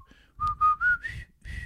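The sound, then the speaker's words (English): A person whistles a short phrase of the Colonel Bogey military march, several clear sustained notes stepping upward in pitch, moderately loud, with no talking. “I think Colonel Bogey's.”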